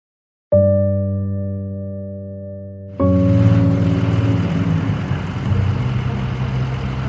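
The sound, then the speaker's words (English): A car engine kicks in abruptly, holding a steady low drone before surging into a louder, harsher, wildly revving roar with a rushing, noisy edge that continues to the end, with no voices. “Suzanne hears a car engine revving wildly.”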